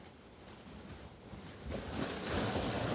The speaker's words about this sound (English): After a while, you notice a huge wave coming toward you, but you are not afraid. The water comes close to your hand